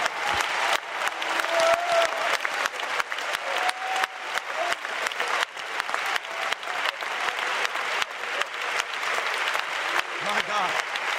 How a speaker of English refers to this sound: Oh, clap your hands and give him praise.